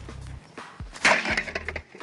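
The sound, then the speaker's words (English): A Keurig coffee machine being smashed: several heavy blows with cracking and splintering, one especially loud crunching burst in the middle, low thuds underneath, no voices. “So people on the internet have been posting videos and pictures of themselves smashing their Keurig coffee machines.”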